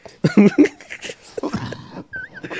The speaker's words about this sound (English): I didn't want to be coughing all in the mic.